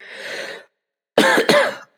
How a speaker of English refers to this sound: And you'll have to forgive my coughing.